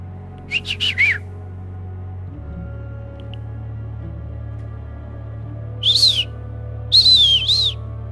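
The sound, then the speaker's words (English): A person whistles a quick run of short, high notes as a signal call; after a pause, two longer warbling whistles answer back, like a call and response, over a low steady hum with no talking. “So like you would do a whistle and then you would know that a whistle would respond.”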